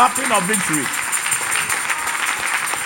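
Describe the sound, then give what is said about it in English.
A church audience claps steadily and densely throughout, a continuous crackling wash of many hands, with a man's voice briefly heard over it at the start. “Clap well. You are doing well. It's a clapping of victory.”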